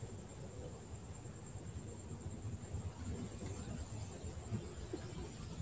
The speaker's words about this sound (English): I hear the river flow.